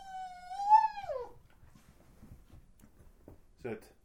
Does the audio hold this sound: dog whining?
yes